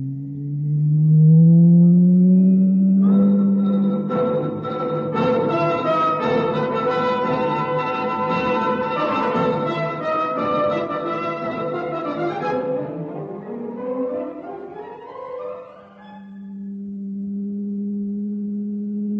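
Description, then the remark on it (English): An elevator starts up and runs with a loud, synthetic electronic hum: rising tones swell into a dense, shimmering harmonic drone, then sweep downward and settle into a steady low whine. “I'm going to start the elevator.”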